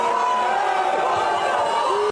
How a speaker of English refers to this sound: Now he's getting booed, and it's nothing but children all around. And some of these children literally grab the guy and are trying to take him away from her.